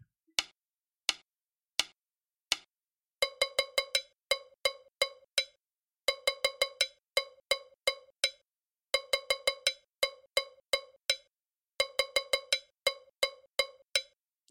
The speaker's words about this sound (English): The bell part is a little complex, but it sets the tone for the groove. It uses edge and side tones for the bell, so a narrower bell stick produces more differentiation in the two bell tones.